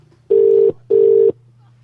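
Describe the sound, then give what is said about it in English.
A telephone ringing tone sounds clearly as someone phones a woman who is looking for her lost cat: two steady electronic tone bursts in quick succession like a double ring, with a low background hum between and after them. “I've called her up because I've seen her phone number on Facebook”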